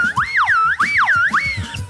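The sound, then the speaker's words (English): A slide whistle swoops up and down repeatedly in smooth, looping pitch glides, a bright, loud tone rising and falling about three times over a low, bumpy background. “Slide whistle.”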